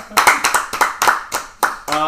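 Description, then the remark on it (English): Sharp, crisp hand claps in an uneven, quick rhythm, a short burst of applause from a few people, with a voice breaking in as the clapping ends. “It's just a round of applause.”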